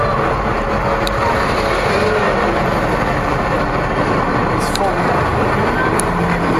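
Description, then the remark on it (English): A bus engine idles at a bus stop in the rain with a steady low rumble, while a constant hiss of rain fills the background and faint voices murmur. “Feel free to open your doors anytime soon, it's raining.”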